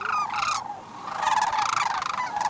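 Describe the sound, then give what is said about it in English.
Loud, rolling bird calls overlap continuously, a chorus of rattling, trumpeting sandhill cranes calling back and forth between birds in flight and birds in a slough on the Copper River Delta, where storms held up their southeast migration; no speech. “The birds aloft chattered to the birds in the slough answering excitedly, but it wouldn't be long before the tone changed.”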